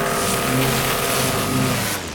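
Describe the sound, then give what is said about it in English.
A power washer roars in one sustained blast, cleaning the undercarriage of a car, a loud hiss of spraying water over a steady droning motor hum, cutting off abruptly after about two seconds. “Listeners, if you too have a mom who takes shortcuts through cornfields, you can clean off the undercarriage with a few blasts from a power washer.”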